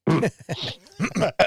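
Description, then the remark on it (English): A person coughs several times in quick, raspy bursts, fairly loud, with a brief throaty pause between them. “Sorry, I coughed right there.”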